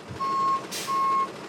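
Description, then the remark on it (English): A big delivery truck backs up in a church parking lot, its reversing alarm sounding two long, steady beeps separated by a short burst of hiss, over a low engine rumble. “In the church parking lot, a volunteer backs up a big delivery truck.”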